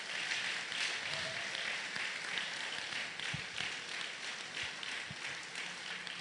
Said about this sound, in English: Let's be on our feet and bless him. Were you blessed by the word of God? Then it's time to give a clap offering to the Lord.